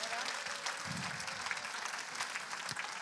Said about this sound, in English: Well, let's give our contestants a round of applause. Thank you for playing Family Fortunes.